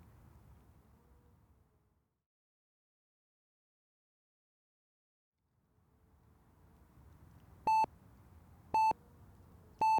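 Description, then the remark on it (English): A digital alarm clock with a bright display goes off in the morning near the end, three sharp electronic beeps evenly spaced about a second apart, loud over a low, steady hum. “Rolling over in bed, her clock's bright digital light blinded her as its recurrent buzzing forced her into her morning routine.”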